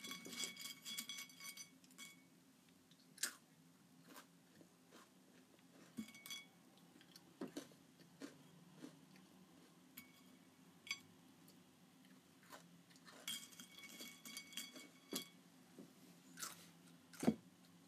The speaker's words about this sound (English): now it's …'s turn to, to chew the pretzels